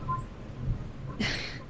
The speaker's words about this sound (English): Oh, it's lovely even in the rain. Yeah, I know. Yes. Oh, it's windy. So windy. Yes. Oh, great storm. Great storm, yes. Yes, I do love a good storm.